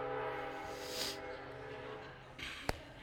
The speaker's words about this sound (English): God, you could silence that train anytime.